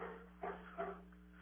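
A dog barks twice in quick succession in the background, muffled, over a steady low electrical hum with no talking.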